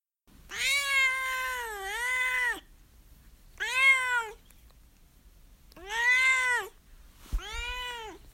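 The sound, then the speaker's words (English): A domestic cat named Duarte meows four times in a row, each call long, drawn-out and wavering in pitch, fairly loud, with short pauses between them and no talking. “All right, now it's time for Duarte's Corner, where my cat Duarte will share his opinions about the book.”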